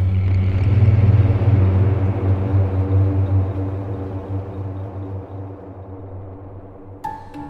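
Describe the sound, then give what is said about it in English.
A car drives along a road at night with a steady, low engine drone and road rumble that slowly eases off, its headlights passing a road sign for Ludlow, 12 miles; a short high tonal beep sounds near the end. No one speaks. “Well, perhaps you're wondering where we're driving this bag of bones at such a late hour.”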